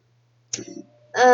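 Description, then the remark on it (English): Someone imitates a woman's hacking cough heard at a cinema screening of Terminator: Dark Fate, with one sharp, rasping burst that fades briefly before a voice starts up loudly. “There was a slight niggly little problem where a lady sat near the back had this hacking cough.”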